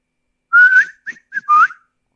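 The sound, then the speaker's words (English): A person whistles a short signal call: a long rising note, two quick chirps, then another long swooping note, clear with no talking. “whistles, yeah, is definitely the winner for me”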